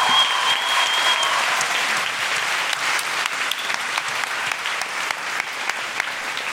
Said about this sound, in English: Thank you so much. Big round of applause. You're doing amazing work.